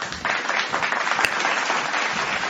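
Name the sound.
clapping applause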